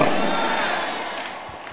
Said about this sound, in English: Stand to your feet. Give the Lord a shout. Clap your hands. Praise God. Hallelujah.